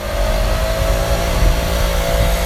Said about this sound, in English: It's fall, and with fall comes all the autumn splendor, which our part of the country is known for. But with those beautiful changing leaves comes a less welcome indicator of the season, the sound of leaf blowers.